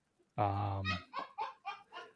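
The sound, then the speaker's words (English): A goose lets out one loud, drawn-out honk, then a quick run of five shorter, cackling honks, clear with no talking over it. “She's like a laugh track in the back.”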